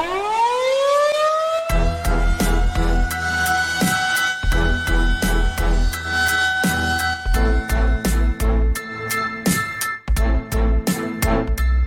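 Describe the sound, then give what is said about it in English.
An air raid siren, played to open the Monday Morning Fallout segment, winds up from a low groan into a steady, loud wail, held for several seconds while heavy rhythmic drum hits pound beneath it. No voices. “Pickle, hit the air raid siren.”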